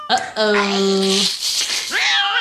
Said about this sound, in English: Ooh, it's cat.